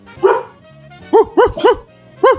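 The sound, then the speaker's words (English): A dog barks five times, one bark followed after a pause by a quick run of three and then a final one, loud with no other sound between. “Woof, woof.”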